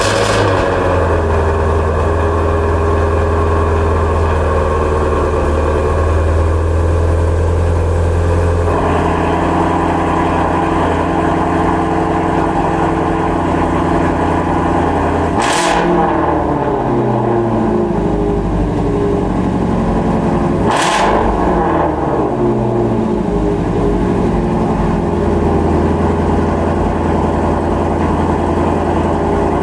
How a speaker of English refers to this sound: Every time I keep asking questions, you keep starting cars. No, that is obviously quite an amazing car, and it sounds so good. What the heck is it? That is the Ford Mustang Shelby GT350